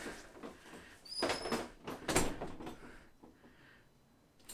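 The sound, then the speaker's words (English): A bathroom door opens and shuts: two scraping, rattling bursts a second apart, the first with a thin high squeak, then quiet room tone. “That's just the bathroom. That's not even the door.”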